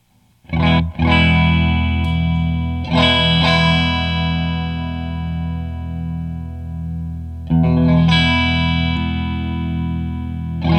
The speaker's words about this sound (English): So chorus next, the waterfall chorus. Waterfall.